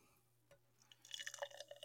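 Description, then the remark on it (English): Beer from a freshly opened can pours into a glass, a faint clink first, then about a second of bubbly, splashing liquid that grows busier as the glass fills. No one speaks. “Pouring it into the same glass I used on the last episode of the Beer Review Journal”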